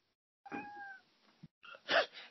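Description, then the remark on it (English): A cat lets out two loud, drawn-out meows, the second one harsher and more insistent, with a short pause between them and no talking. “And, like, man, sorry, my cat's, like, crying like crazy.”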